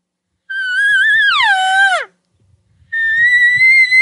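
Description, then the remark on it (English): Two loud, whiny elk cow calls made by a hunter, a wavy up-and-down estrus whine. The first wavers up and down, then slides sharply downward. After a short silence, a second call holds a high, slightly quavering pitch. No talking. “I use these real whiny, drawn out up and down cow calls versus like just estrus cry”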